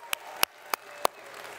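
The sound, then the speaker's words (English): Four sharp hand claps ring out at a steady, even pace over a quiet, low hum during a church service, with no cheering or voices audible. “If you agree with that church family, give out some yells and screams and some claps and praise for those people.”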